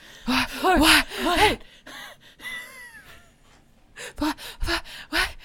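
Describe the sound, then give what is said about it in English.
People perform exaggerated, voiced panting: a loud run of quick breathy huffs, a quieter stretch of breathing, then another rapid rhythmic burst of pants. “Now let's both take a run at that panting.”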